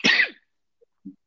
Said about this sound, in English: You can hear, it's still here, man. I still got this cough that's just lingering, and I still got this snot situation, man, that's just hanging out. It's not going away.